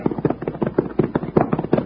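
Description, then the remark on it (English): A rapid volley of gunshots fired on the command to fire, about ten sharp cracks in quick, slightly uneven succession over two seconds, with no voices. “Get it, Buckshot. Fire.”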